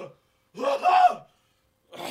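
throat clearing

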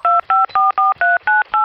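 telephone keypad dialing tones

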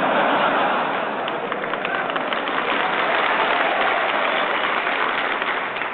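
audience applause

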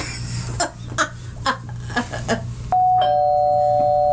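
doorbell ringing

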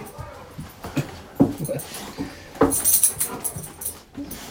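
dog whimpering

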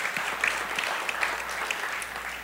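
audience applauding

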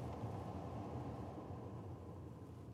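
car interior road noise

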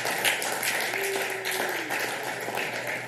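audience clapping hands

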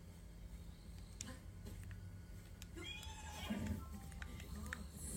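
horse whinnying and hooves

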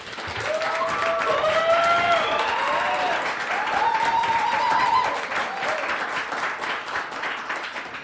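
audience applause

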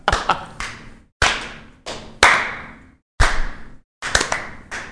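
slow clap

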